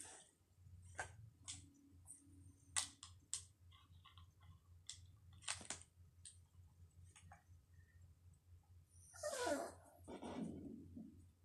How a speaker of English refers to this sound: I'm sorry. My dog is slightly being annoying.